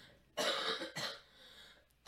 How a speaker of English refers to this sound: And she's about to have a coughing fit again.